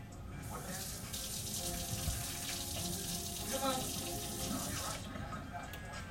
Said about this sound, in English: So if you put some splashes of water and it bubble up, it's hot. It ain't bubble up that much, but I'm gonna test one out.